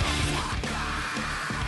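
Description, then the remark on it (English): A harsh, raspy screamo-style vocal scream tears through a dense wall of loud, distorted sound, sustained for a couple of seconds with no break. “Well, that, oh, he's got a screamo scream.”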